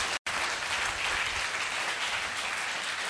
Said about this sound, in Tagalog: Yung malakas nga na palakpak kay Lord.